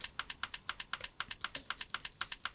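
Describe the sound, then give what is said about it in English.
A WhatsApp typing indicator sound: a rapid, steady train of crisp keyboard-like clicks, about eight per second, evenly paced and moderately quiet, with no voices. “When she has stopped, the typing sounder stops.”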